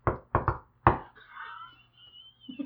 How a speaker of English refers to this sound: I'll knock. Okay, you hear like a boom, boom, and something throws its, you can only assume its arms against the door.